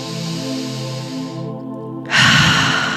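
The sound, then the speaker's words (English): A long, deep inhale draws in steadily, then gives way to a loud, forceful exhale pushed out through the mouth, breathy, with no talking. “And imagine you are breathing up into the crown of your head. And when you exhale, it shoots out the top of your head.”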